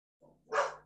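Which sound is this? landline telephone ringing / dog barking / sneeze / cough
dog barking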